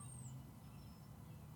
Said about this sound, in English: If you listen carefully, you can hear that it is a beautiful day. You can hear the birds. There was a pheasant out in the background there.